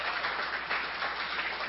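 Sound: audience hand clapping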